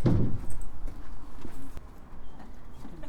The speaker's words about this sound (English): so they're loading up the boat, putting it on a trolley.